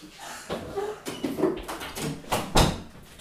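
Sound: door being shut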